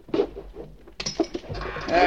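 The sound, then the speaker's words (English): A squeaky office chair that needs oil creaks and groans as someone sits down in it, with a couple of short, high-pitched squeals followed by a longer, strained creak. Fairly loud, with no talking. “This chair could use a little oil.”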